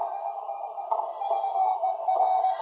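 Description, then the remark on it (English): A faint CW Morse code tone, tuned in on an SW30 receiver, beeps through the hiss of the shortwave receiver, a thin mid-pitched note rising and dipping inside a steady band of static. “Can you hear the CW there”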